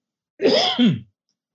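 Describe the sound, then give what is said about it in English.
A single rough throat clearing merges into a short cough from a person with a common cold, lasting well under a second, with no one speaking. “So I may be coughing and blowing my nose through this interview.”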